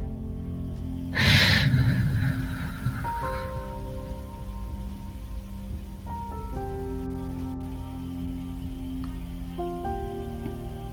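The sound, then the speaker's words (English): A vacuum cleaner hums steadily, opening with a short loud rushing burst before settling into a continuous droning whir whose tonal overtones shift pitch in small steps. No one speaks. “As the vacuum continues to cycle, it is clearing you, the hum of the vacuum, the noise of it, soothing and clearing.”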